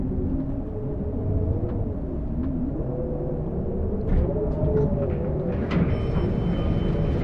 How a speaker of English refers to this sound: The elevator slows to a stop, and the strong sound of whipping wind startles me.